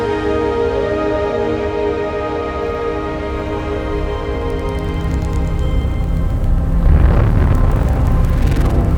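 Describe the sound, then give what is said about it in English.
Gravitational waves from a lighter black hole falling into a very heavy black hole, turned into sound: a steady, ringing drone of layered tones over a deep rumble, growing louder and breaking into rough, noisy surges near the end. No one speaks. “They are literally the sounds of space ringing.”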